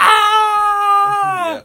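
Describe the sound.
A voice imitates the scream of the boy Kevin, played by Macaulay Culkin, from the famous bathroom aftershave scene: one sustained, high-pitched, loud cry held for over a second, then sliding down in pitch and cutting off abruptly.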